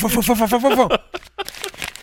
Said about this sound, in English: Oh, for sure. He is shuffling papers. He's a tactile man. Yeah. I need to feel the papers.